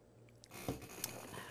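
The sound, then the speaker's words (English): A quiet sip from a drink after a toast: a brief wet slurp followed by a soft swallow-like click, with no one talking. “And stretch it out. Yes, yeah. And we sip.”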